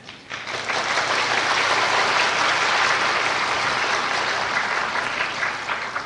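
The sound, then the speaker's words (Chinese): A crowd at a question-and-answer session with a Buddhist master bursts into sustained applause in approval, many hands clapping densely and steadily for several seconds, fairly loud, with no voices rising above it. “这个是拍手，是赞同，我是叫沙台的啊，赞同啊，好，谢谢。”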